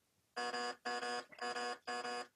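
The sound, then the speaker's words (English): A quiz game buzzer gives four short, harsh electronic buzzes in a steady rhythm, each a rich harmonic tone lasting about a third of a second, heard clearly with no talking. “That is the weakest buzzer ever. I think I have to make it louder.”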